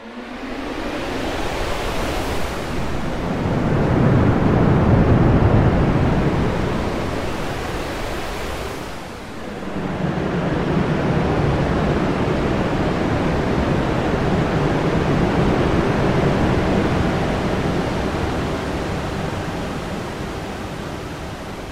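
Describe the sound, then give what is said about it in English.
A dense Valhalla Shimmer reverb wash whose character shifts as its shift and size controls are automated, swelling into a roaring, surf-like rush, briefly dipping, then holding as a steady broad hiss that slowly fades. No voices. “Now, the real fun with Valhalla Shimmer starts when you start automating some of its parameters.”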